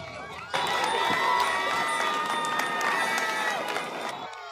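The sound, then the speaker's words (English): A large outdoor crowd of 500 to 1,000 people in Harvard Square, stopping traffic to celebrate a victory, roars and cheers continuously after a sudden start, with overlapping shouts and whistles forming a dense, steady wall of noise that stays loud throughout. “It was an improv celebration in Harvard Square, an all-Riker mammoth fair, the crowd stopping traffic to celebrate, some celebrating with champagne, others with the American flag, and mixed in with plenty of noise.”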